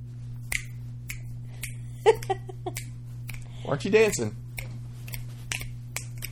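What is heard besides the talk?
finger snapping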